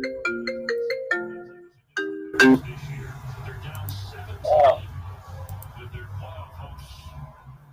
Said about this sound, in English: You got a call from, is that your phone